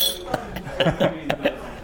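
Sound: dishes clinking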